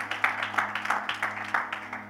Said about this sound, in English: Somebody better start clapping.